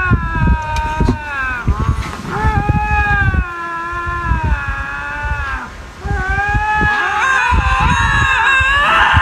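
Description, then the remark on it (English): Two lynx in Canada, face to face, trade long, wavering howls that rise and fall in pitch, each trying to make the other back down, their eerie yowls overlapping and alternating almost without pause, with a low rumble of wind noise underneath. “So somebody got video of two lynx in Canada getting into each other's faces and howling, both trying to make each other back down.”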